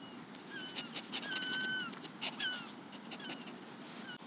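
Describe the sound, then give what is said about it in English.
Seagulls call repeatedly in thin, high, sliding cries over a steady low rumble of background noise, with several overlapping squeals rising and falling throughout. “Hear the seagulls.”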